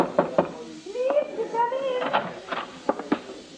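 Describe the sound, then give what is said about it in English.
Sharp knocks on a wooden backstage dressing room door with a six-pointed star on it: a quick pair, then a longer pause filled by a faint wavering voice, followed by several more clear raps. “Then I pushed my way through the crowd, bribed my way backstage, and found the dressing room door with a six-pointed star on it.”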